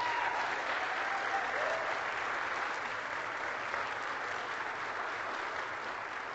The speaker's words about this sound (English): Congratulations. Turn and face the congregation. Congregation, round of applause for this young man.